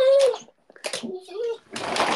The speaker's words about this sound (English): Sorry, my dog's freaking out.